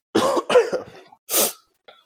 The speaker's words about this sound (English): Yeah, recording this with me every week must sound like I'm just constantly dying. Like, the way I have to, like, cough and, like, just suck fluid back in through my nose every between every segment.